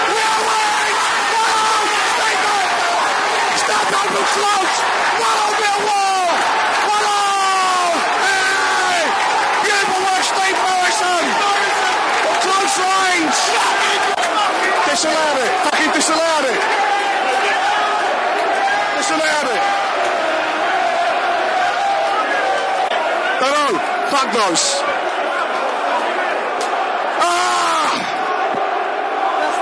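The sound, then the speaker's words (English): A large football stadium crowd roars continuously and loudly as fans invade the pitch during a Forest versus Millwall match, with cheering, shouting and whooping voices rising and falling in a dense, chaotic wall of noise. “Crowd went on the pitch.”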